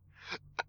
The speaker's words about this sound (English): Oh, goodness. Bless you. Man, don't bless me for my burps.